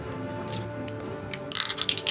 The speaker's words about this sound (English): First time I've seen you use the dice tray tonight, bro.